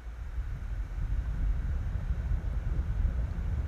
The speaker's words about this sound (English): Hey, I'm gonna turn on my laptop fan. Tell me if it's too loud because we have headphones on.